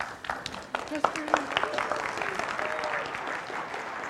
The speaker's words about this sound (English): I like how that applause went right into me coming up, and it got louder. I don't know how that happened.